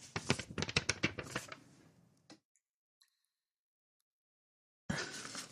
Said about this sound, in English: Thank you for the paper ASMR.